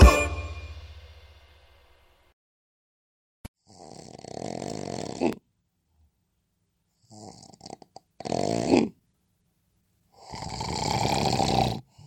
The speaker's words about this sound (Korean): 혹시 이렇게 입을 벌리고 코를 골거나 숨도 멈춰지나요? 그런데 왜 방치할까요?